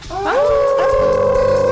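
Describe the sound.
Several people howl together like dogs baying at the moon on the Moondog Show, on a count of three for Thanksgiving week, a loud sustained rising wail that holds steady and overlapping, with no talking.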